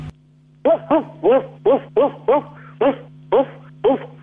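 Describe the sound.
A therapist sitting in an office yips out nine short, high-pitched barks in a quick, steady rhythm, a voice imitating a small dog, fairly loud over a low constant hum.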